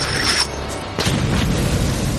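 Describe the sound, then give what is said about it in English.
A loud explosion from a hockey-puck-shaped explosive booms about a second in, a sharp burst that rolls into a heavy low rumble lasting to the end, with no voices. “Bang, another one of those stupid hockey pucks goes.”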